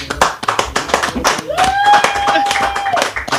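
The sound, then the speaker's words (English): An audience claps in a brisk, scattered round of applause for guests from Positive Direction (PD Nation), and a steady high whistle rings out over the clapping midway through before cutting off. “Give them a round of applause, people.”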